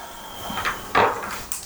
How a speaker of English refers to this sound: And right on the wall, hanging by a peg, is a key. Yes. I use the key and open the door.